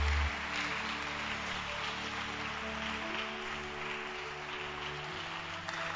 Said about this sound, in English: Clap your hands. Clap your hands.